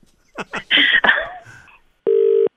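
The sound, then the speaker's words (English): A telephone rings once, a short steady electronic tone that follows a burst of clattering and rustling handling noises, with no one talking. “This is the last time I'm answering this phone.”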